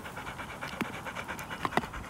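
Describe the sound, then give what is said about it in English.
A dog chews on a piece of bark, with a few sharp crunching snaps scattered over steady, breathy panting. No one speaks. “Is that piece of bark really nice to chew?”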